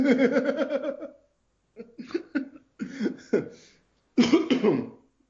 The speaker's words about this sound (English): Well, I'm probably dying. I got too many shots. Yeah, that was not a tetanus cough, but that might have been a corona cough. I did not just cough up a tetanus. I think you just coughed up a rusty nail.